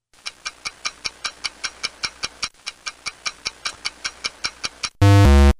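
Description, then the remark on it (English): A countdown clock ticks steadily and quickly, roughly twenty crisp ticks over five seconds, then a loud, harsh buzzer cuts in at the end. No one speaks. “All right, I'll put 5 seconds on the clock and go.”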